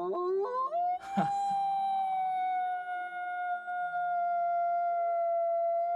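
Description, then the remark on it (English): A person lets out one long imitation wolf howl, sliding upward and then holding a loud, steady wailing note for several seconds, with a soft melodic bed underneath. “Do you want to give that full wolf cry?”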